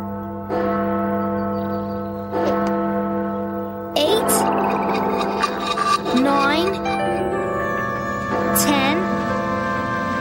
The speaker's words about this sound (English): Clock? Since when does it have a bell? Maybe Mr. Kroner added it.